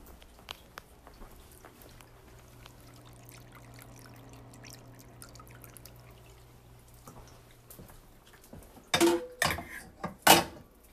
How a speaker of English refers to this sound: Let's see if you can hear the intricacies of this cat fountain.